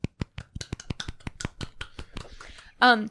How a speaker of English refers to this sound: Golf clap. There we go. Clap.